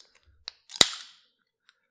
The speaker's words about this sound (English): So I'm gonna crack open this water now. Let's hear it.